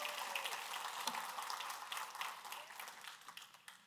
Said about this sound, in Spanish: Denles un fuerte aplauso a esta gente. Y denle las gracias.